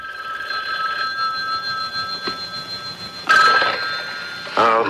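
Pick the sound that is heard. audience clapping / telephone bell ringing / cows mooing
telephone bell ringing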